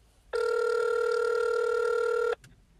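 A single steady ringback tone from an outgoing phone call, calling someone back after a lost call, sounds for about two seconds, clear and fairly loud, then cuts off into quiet. No one speaks.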